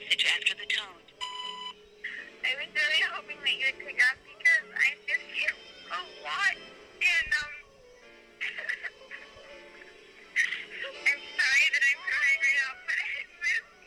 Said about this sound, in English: And this starts playing. What starts playing? This does. That's on SoundCloud? Yeah. Okay, it's ringing.